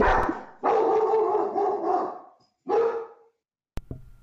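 A dog barks loudly, a few sharp, drawn-out barks with short pauses between them, then a quick click and faint noise at the end.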